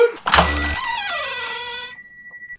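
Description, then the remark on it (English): A door thuds shut with a heavy low knock, followed by a bright, wavering ringing tone that lingers and slowly fades for about two seconds. “Shut that door! Dad, shut the door!”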